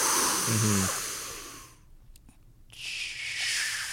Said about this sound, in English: So by breathing hard like that, one of the things you're doing too is you're tightening up your core. So you're kind of heating yourself up a little bit.